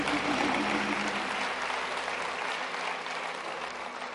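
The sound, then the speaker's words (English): An audience applauds the choir with steady, dense hand clapping that stays fairly loud throughout, a continuous wash of many hands with no speech over it. “Let's give our choir hand clap.”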